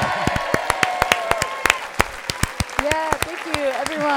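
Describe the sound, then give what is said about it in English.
A student audience at a show claps steadily to welcome a guest, sharp irregular hand claps rising above a dense wash of applause, with voices whooping and cheering through it. “They're still clapping.”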